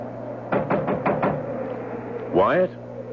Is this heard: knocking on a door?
yes